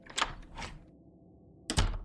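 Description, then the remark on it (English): A door thuds shut, heard as a few sharp wooden clunks: two quick knocks, a short pause, then a heavier final thump, with no voices. “There's the door!”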